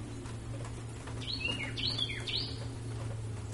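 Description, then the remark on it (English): A Cleftorn crest finch gives three quick, bright chirps in close succession, each a short sweeping note, over a steady low background hum with no talking. “That's a Cleftorn crest finch.”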